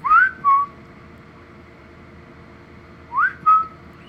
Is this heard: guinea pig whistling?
yes